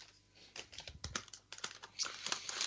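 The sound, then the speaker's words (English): Paper crinkles and rustles in a studio in a quick, irregular run of crackling bursts, moderately loud, with no voices. “Just your crinkling paper.”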